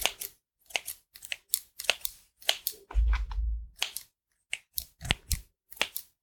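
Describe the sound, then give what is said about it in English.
Scissors snip through a paper herbal tea packet to cut it open: about a dozen crisp, sharp cuts in an uneven rhythm, with a brief low rustling thump partway through and no talking. “So what I'll do is I'll just take my scissors and just cut one of these packets open.”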